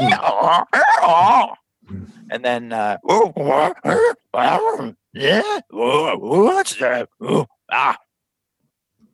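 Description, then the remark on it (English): A man's voice imitates a braying donkey with a run of loud, strained hee-haw bursts, rising and falling in rhythm for several seconds before stopping. “And you hear this weird donkey bray. Like sound of a braying donkey.”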